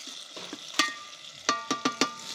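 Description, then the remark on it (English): A steady, soft sizzle of bacon frying in a pan, broken by several sharp metallic clinks of a utensil against the pan, with no talking. “Oh, my bacon's starting to cook.”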